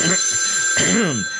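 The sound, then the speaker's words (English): A telephone rings with a steady, high-pitched electronic trill lasting the whole moment, fairly loud, while a brief voice-like sound rises and falls partway through. “I'm not expecting a call, but y'all, you go over there with Squeaky Shippy. I'll take care of this.”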